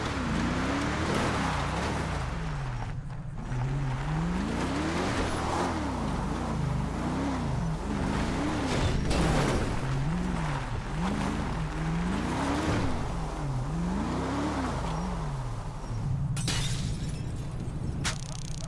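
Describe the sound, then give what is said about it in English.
A patrol car engine revs up and down repeatedly in a rising-and-falling pattern while driving, loud, with a brief crash or clatter near the start and steady road noise throughout. “Need my patrol car. Let's ride.”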